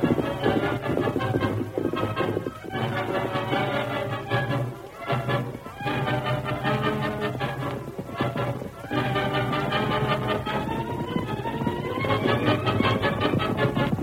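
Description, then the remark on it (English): Galloping hoofbeats of Silver, led by the masked man, and the marshal's horse pound in a steady, driving rhythm beneath loud, dramatic orchestral music, continuing without a break for the whole stretch. “The horse ridden by the marshal was no match for Silver, but with the masked man to lead the way and to urge the other on, they made good time.”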